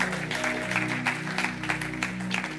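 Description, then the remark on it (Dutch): An audience claps steadily throughout, a dense crackle of many hands at moderate volume, with a low sustained hum underneath the applause. “Why don't we give them a hand too?”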